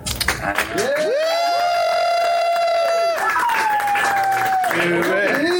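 crowd, cheering

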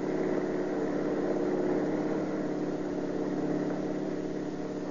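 vehicle, car engine accelerating

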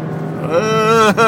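vehicle, car driving in traffic

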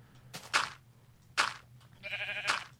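animal, sheep bleating

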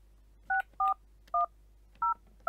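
signal or alarm, telephone dialing tones

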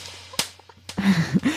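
sound effect, slap sound effect

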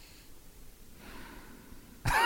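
human body sound, heavy breathing

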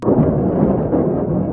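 sound effect, explosion

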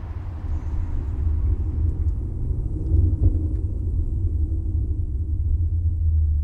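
vehicle, old car driving

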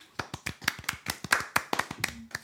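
human body sound, hand clap

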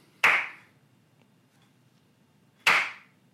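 human body sound, slow hand clapping

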